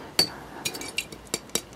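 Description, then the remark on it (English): A glass water bottle clinks several times in a loose, uneven rhythm: four or five sharp taps, each with a brief bright ring, against a quiet background with no talking. “Glass bottles for your water.”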